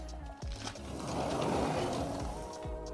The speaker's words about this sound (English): Oh, sounds like there's a train.